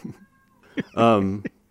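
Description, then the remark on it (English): A cat interrupting an interview lets out one loud, drawn-out meow into the microphone, bracketed by a few short, softer chirps or noises just before and after. “This is my cat interrupting the interview.”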